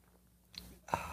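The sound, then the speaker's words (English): A quick sip of coffee from a mug: two short, soft slurping bursts in an otherwise quiet moment, with no talking. “It's called the simultaneous sip go.”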